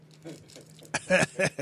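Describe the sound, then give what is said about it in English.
Crisp, crackly crunching of Whoppers chocolate malted milk balls being chewed, with several loud bursts in an uneven rhythm after a quieter start, over a low steady hum. “Y'all hear me crunching on whoppers on there.”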